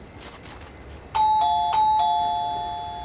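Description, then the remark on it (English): An electronic doorbell at a front door, pressed during a pizza delivery, chimes several quick two-tone ding-dongs in a row, clear, the tones ringing out and fading slowly after a few soft thuds at the start. “I hit the doorbell first.”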